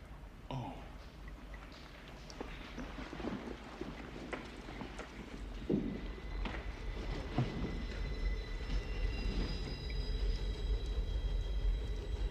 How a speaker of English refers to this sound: What's that? What's what? Sounds like a train.